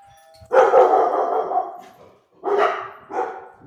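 Dogs bark loudly in three bursts: a long, excited stretch of overlapping barks, then two shorter outbursts after a brief pause. No one is speaking.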